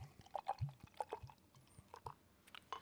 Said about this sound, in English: A lot lighter than I thought it was going to be. Yeah, I expected something dark coming out of there. We got this poured out. This is looking fucking ridiculous. This almost looks like a fucking red ale. Yeah, dude. It's it has a beautiful hue to it.